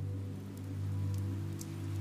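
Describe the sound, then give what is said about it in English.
Steady rain falls over a constant low rumble, with a few scattered drops ticking sharply on a surface now and then; no voices are heard. “Their heads became heavy in the middle of September, and so they now bow to you, and even more to the rain and winds that arrive.”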